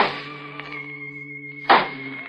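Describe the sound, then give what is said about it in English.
A cane taps the floor: one sharp, solid thunk stands out, preceded by a fainter tap, all over a steady, humming drone with no talking. “I picked up the cane and began tapping on the floor.”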